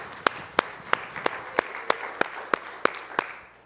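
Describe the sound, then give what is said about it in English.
An audience claps in unison during a church worship service, about ten sharp, evenly spaced hand claps in a steady quick rhythm over a soft background crowd murmur, with no one speaking. “Come on, give him one more hand clap with me, would you?”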